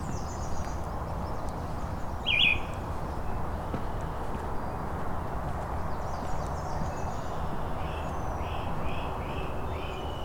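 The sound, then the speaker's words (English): A great crested flycatcher gives one sharp, rising whistled call, followed later by a few fainter, similar notes, all over steady outdoor background noise. “There's a great crested flycatcher.”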